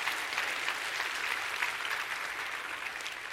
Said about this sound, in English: Clap your hands and rejoice in that.